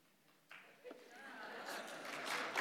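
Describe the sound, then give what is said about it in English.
An audience breaks into applause after a Bible reading of a genealogy, starting with a few scattered claps and swelling into a steady, dense patter of many hands that grows louder toward the end. “I don't think I've ever gotten clapped for after reading, but I'm hoping you're clapping for God's word.”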